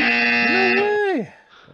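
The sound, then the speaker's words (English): A voice imitates a Family Feud game show buzzer ding: one loud, bright, buzzy tone that holds, lifts slightly in pitch, then slides downward and cuts off after about a second. “A Family Feud ding. Yep. There you go. Yeah, that's what that was.”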